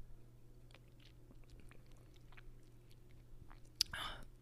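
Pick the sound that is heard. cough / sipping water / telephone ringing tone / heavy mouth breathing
sipping water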